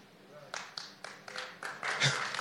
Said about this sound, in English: I didn't ask you to clap. You're going to clap, clap well.